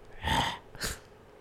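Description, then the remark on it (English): A voice imitates a fart, demonstrating letting out a small part of a fart, with two breathy, hissing bursts of sound, a longer one followed by a short puff, with no talking around them. “You need to commit to letting out a quarter of the fart.”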